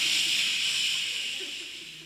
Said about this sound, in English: We have our cans of de-religification spray under your seat. So go ahead and pick yours up. Spray yourself.